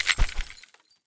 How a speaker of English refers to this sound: hurled the screwdriver forward at the wall, screaming as the handle shattered against the wall, sending the screw head flying.